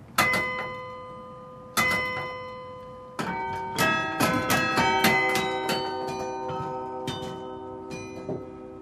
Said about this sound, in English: and it needs to be understood that because we're in the cabin, you're hearing a clattery noise from the key as well as the bell. Now, if you were outside listening, you wouldn't hear that. This is just one of our 48 bells.